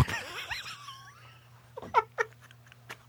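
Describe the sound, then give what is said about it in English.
A person imitates a pig, with squealy, wavering grunts followed by a few short, choppy snorts and snuffles, fairly quiet over a steady low hum. “Sometimes I might make like a little pig sound.”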